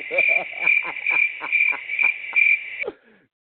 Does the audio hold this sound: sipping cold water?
no